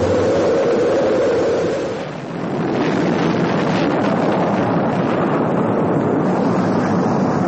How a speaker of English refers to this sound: Six, five, four, we've gone for main engine start. We have main engine start.